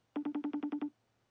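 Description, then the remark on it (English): A phone rings with a quick electronic trill: eight rapid, evenly spaced buzzy beeps at a steady mid-low pitch, fairly loud, lasting under a second and then stopping. No one speaks. “I don't know if you guys can hear the phone.”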